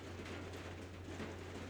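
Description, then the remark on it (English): Heavy rain pours down in a steady, dense hiss that never lets up, with a low, constant hum beneath it and no voices. “It's really raining. It's guys. Raining very hard.”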